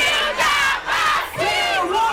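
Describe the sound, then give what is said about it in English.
A large crowd in Lagos, Nigeria, cheers and shouts together celebrating an attempt at a new world record for nonstop cooking, loud and sustained, with surging waves of many voices rising and falling over a couple of seconds. “Last week, a crowd gathered in Lagos, Nigeria, to celebrate an attempt at a new world record.”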